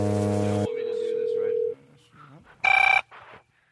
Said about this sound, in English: It's still ringing on my end here.